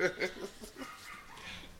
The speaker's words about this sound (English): These damn dogs fighting again.